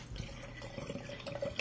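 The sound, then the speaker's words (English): Liquid pours steadily into one large glass and one small glass, filling them to the same height, with a soft splashing trickle and a faint ringing tone, quiet and continuous, with no voices. “I will fill them to the same levels.”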